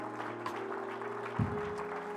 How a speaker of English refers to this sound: Somebody give the Lord a good hand clap tonight. Thank you, Jesus.